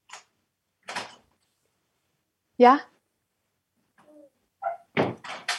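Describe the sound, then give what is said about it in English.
A couple of separate knocks on a door by a five-year-old girl, a short spoken reply, then the rustle and thud of the door being opened, moderately loud. “My daughter is knocking, and this is one of the reasons why I cannot listen to the podcast often.”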